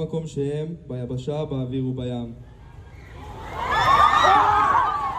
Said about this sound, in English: But it still caused a stampede. The same paper is reporting at least 30 people were in the hospital. Oh, jeez. This is a little bit of what it sounded like when that broke out from, you know, people's TikTok accounts.